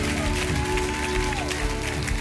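An audience claps together as a clap offering of praise to the Lord, a dense steady wash of applause at a fairly loud level, with sustained tones ringing underneath throughout.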